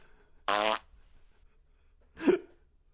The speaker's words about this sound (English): There we go. There's a couple of farts.